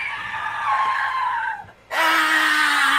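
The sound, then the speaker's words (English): A human voice lets out two loud, strained screams in imitation of a wounded creature, the first long and wavering, then after a brief pause a harsher, louder shriek sustained to the end. “Just a scream at this point.”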